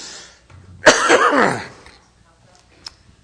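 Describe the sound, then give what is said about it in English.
A single loud cough bursts out with a sharp start and trails off raspily over about a second, followed by quiet and a faint click. “I'll try not to cough all night.”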